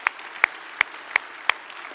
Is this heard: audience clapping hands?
yes